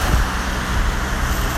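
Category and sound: vehicle, car passing on street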